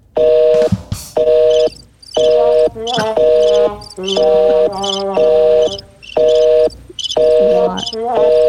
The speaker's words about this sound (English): Worst crickets in the world. Listen really to this. Bad crickets. This is a preset on this mixer I bought. Those are like animatronic crickets. How hard is it to get cricket sounds? That could be like baby birds. It could be.